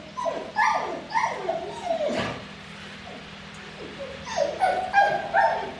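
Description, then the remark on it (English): Wilma the dog yelps and whimpers in quick, high-pitched bursts, with a few short barks mixed in, from a few metres away, insistent, reacting as her owner pats a pretend dog in a jealousy test, pausing briefly midway before the excited cries resume. “From a few metres away, Wilma reacts very strongly.”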